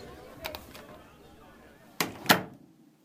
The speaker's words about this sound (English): New Year's Eve. Can you hear the party downstairs? I'll just close the door.